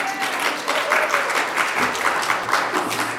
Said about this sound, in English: commanding God's obedient, grateful, and thankful Christian people who are praisers and worshipers of God to clap your hands, all ye people.